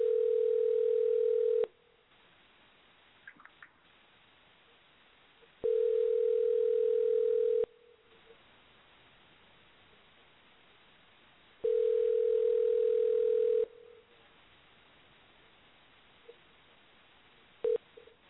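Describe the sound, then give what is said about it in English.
A telephone ringback tone sounds in three long steady bursts about six seconds apart, with quiet pauses between and nobody picking up. “Didn't answer. Hello. Hello. Okay, that one didn't work.”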